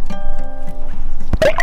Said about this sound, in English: Jack lowers his hydrophone into the pond.